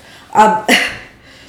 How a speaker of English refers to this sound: Well, I am coughing again.